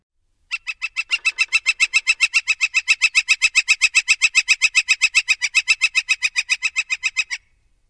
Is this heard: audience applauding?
no